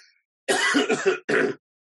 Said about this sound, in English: Excuse me for coughing so much. I've got something in my throat today.